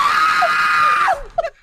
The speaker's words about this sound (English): You done took a grown-ass man, got him screaming like a white girl.